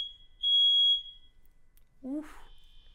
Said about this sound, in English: Set a fire alarm.